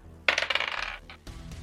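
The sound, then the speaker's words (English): Dice clatter across a hard tabletop in a quick burst of bright clicks and rattles that slows and settles within a second, rolled for an attack in a tabletop role-playing game, followed by a low thump and faint room noise. “Actually, I don't want to use that dice. That dice has burned me before.”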